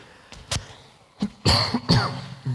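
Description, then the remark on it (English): A burst of several harsh coughs into a microphone, irregularly spaced, with a couple of louder, throaty hacks in the middle and no talking. “If you cough, you can't get away from them.”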